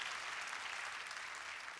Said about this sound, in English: If you know I'm right, clap your hands.